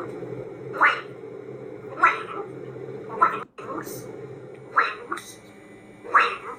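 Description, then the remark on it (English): A macaw from Parrot Wizard makes five raspy, speech-like calls at roughly even intervals, fairly loud, as if attempting to mimic words such as "gray goose", over a steady low background hum. “You know, if that macaw is hearing the phrase gray goose enough that it starts saying it, well, then we have to have a conversation with”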